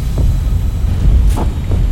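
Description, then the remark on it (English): A giant handheld vacuum cleaner with a glaring headlight and strong suction, shoved under a bed, roars steadily for two seconds, a deep, rumbling motor drone with a throbbing low end and a couple of brief whooshing surges. No voices are heard. “Camilla watched in horror as the giant handheld vacuum with a glaring headlight was shoved under the bed. Its suction so strong that Camilla had to wrap her arms around the bed leg, her body flying up, her fingers losing their grip.”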